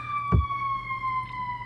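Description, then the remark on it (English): A steady, high-pitched emergency siren of vehicles heading to a large alarm fire wails continuously, its tone sliding slightly downward, with a brief low thump early on and a rumbling background hum. “There's apparently a 9,000 alarm fire going on near my house.”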